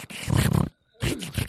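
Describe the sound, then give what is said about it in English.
A person imitates a pig saying "1987" with two rough, snorting grunts, low and gravelly with harsh breathy noise, separated by a short silence. “It's a pig. That's the pig, and he's still mad at 1987.”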